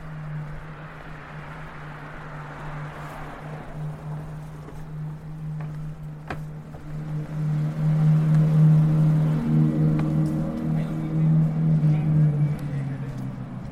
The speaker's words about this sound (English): You may just have heard a very loud engine. It was a very luxurious car. But it's the current form of parading.